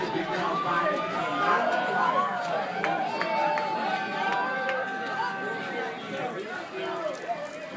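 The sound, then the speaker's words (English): Dense, steady crowd chatter fills a packed bar as the Warriors are about to win the championship, many overlapping voices blending into a loud, continuous murmur with occasional louder voices rising out of the din. “I'm in a packed bar, and the Warriors are about to win the championship.”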